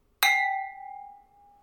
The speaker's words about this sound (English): We should steal these glasses. They make an excellent ringing.